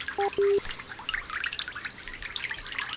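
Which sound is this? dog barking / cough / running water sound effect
running water sound effect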